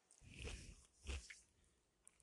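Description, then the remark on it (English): Two crisp crunches of someone biting into potato chips, about half a second apart, followed by quieter chewing and a faint click; no one speaks. “Also, sorry for the crunching. I'm eating chips right now.”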